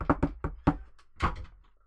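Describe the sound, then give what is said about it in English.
A postman gives four sharp knocks on a front door in quick succession, followed by a short rattling clunk as the door is pulled open, then quiet. “Fine, right, I'll answer the door then.”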